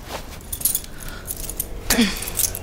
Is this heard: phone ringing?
no